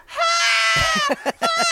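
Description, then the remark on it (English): A voice mimics a mother's high-pitched scream on a phone call, one long sustained shriek that breaks into a few short, choppy yelps, loud. “And she's screaming.”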